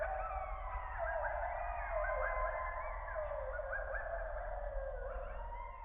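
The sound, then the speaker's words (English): A chorus of coyotes howls and yips together in communication between packs, many overlapping wavering, rising and falling calls filling the whole stretch, over a low steady background rumble. “You may have heard some of this interpack communication before. It sounds a little something like this.”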